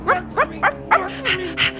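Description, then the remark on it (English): A puppy gives a rapid run of about six short, high-pitched yappy barks, evenly spaced, the last few sounding a bit harsher and breathier, with no one talking. “Come on, puppy, bark.”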